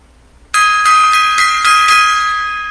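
A gong is struck once, loud, its bright metallic tone ringing on with a pulsing shimmer as it slowly fades. No one speaks.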